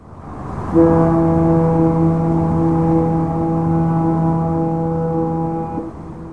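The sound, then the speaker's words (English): A Bay Area foghorn sounds one long, deep, steady blast lasting about five seconds, loud and droning with a rich, buzzy tone over a low background rumble before it cuts off. “you know, the other sound that people think of instantly when they think of the Bay Area is that herald of Carl the Fog, the fog horns.”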